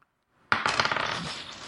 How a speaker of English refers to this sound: So roll a d20.